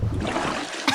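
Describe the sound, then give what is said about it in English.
Busy splashing of water as someone comes up out of a river, with a sharper splash near the end of the brief burst. “Yeah, you kind of splash your way up.”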